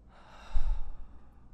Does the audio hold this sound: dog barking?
no